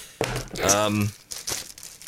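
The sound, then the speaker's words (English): A new parcel from a shop, containing Bose Frames Alto, being torn open: a voiced sound is followed by several short, bright bursts of crinkling and ripping, loud and irregular. “I'm going to open the parcel right here on the show.”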